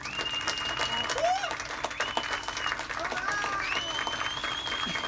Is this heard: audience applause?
yes